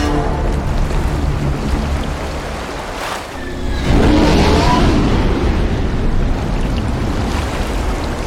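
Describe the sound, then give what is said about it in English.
A spaceship engine roars overhead as the ship is brought in near the site, a dense, rushing rumble that swells louder midway as the craft comes down, then holds steady. No voices. “So we're in, there's like ankle-high water, and the Normandy is coming in above us.”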